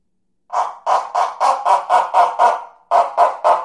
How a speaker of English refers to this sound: And then the mini version of the lion's roar actually made the sound of a dog barking.